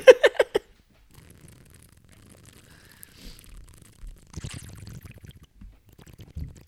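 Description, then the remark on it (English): A voice imitates falling rain by mouth, with water held in the mouth: four quick, sharp pops up front, then a low, wet, bubbly gurgling that swells near the end, fairly quiet, with no talking. “You're about to get rained on.”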